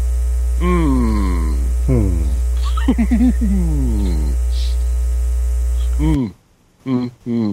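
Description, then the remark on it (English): A steady, loud 60 hertz electrical mains hum drones continuously under several stretches of talking, then cuts off abruptly near the end, leaving only brief speech in near silence. “it's not 50 hertz. It was actually 60 hertz.”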